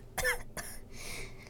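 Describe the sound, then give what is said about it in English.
Two quick, harsh coughs, followed by a softer, raspy rattle in the throat, with no talking around them. “The gummy bear coughs.”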